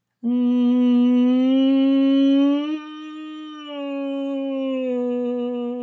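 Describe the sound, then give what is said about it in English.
A voice hums a sustained nasal "ng" (as in "sing") vocal warm-up tone, linking the notes smoothly, steady and mid-pitched, stepping slightly higher partway through and continuing a bit softer, with no talking. “And you can do that on a hum, M. You can do that on an NG of sing.”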